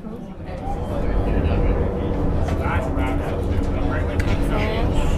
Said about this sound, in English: It's not unlike riding the subway, except the cage goes down. And the lights that we're passing, you'll notice there's every couple seconds there's some light that we pass. Yeah. So that's from the levels. There's a level about every 200 feet